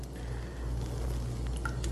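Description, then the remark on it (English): A deep brown beer is opened and poured into a glass, a wet, fizzing rush over a steady low hum, with a few quick clinks near the end and no talking. “So anyway, let's crack it open.”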